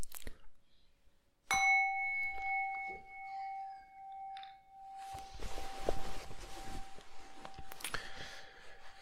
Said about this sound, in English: So I'm going to ring the bell. And then we start.